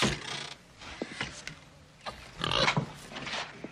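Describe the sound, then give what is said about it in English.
A pig, brought by a patient as a gift for a doctor, grunts and oinks in several rough, snorting bursts, moderately loud, with brief pauses between the noisy squeals and snuffles. “Doc, my foot feels so good, I brought you this pig.”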